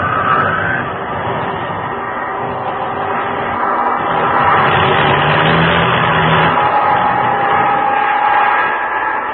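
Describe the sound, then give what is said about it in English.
A loud airplane engine roars steadily for several seconds, its rough drone wavering in pitch and intensity as if straining, with no voices present; an aircraft with engine trouble flying over the open ocean. “And when the motors conked out completely, the sound of wind in the struts and against the fuselage and on the wings was all the sound there was, and the falling craft gathered speed.”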